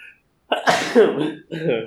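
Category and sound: human body sound, sneeze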